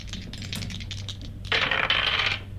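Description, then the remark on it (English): Small hard dice fall off a desk, clattering and ticking against a surface in a quick scatter of clicks, then a denser burst of rattling as they tumble and settle, with no talking. “I might have to do that again because my dice have fallen off the bench, the desk here.”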